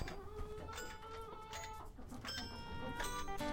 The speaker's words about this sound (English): This is the poem Cake by Todd Colby, as recited by our chickens.